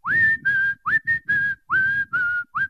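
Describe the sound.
A person whistles a slow, eerie melody from a suspense film score, the one also used in the film Kill Bill: about eight sustained notes with rising swoops into each, loud, with faint breathy noise underneath and no talking.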